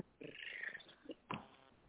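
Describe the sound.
A person makes a short, throaty purring sound, rolling and rising over about two seconds, followed by a brief breathy burst, over a thin phone-like line.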